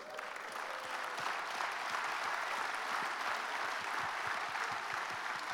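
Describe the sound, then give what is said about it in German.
An audience applauds, many hands clapping in a dense, steady patter that stays loud and even for the whole stretch, with no voices standing out above it. “Lass einen Applaus geben.”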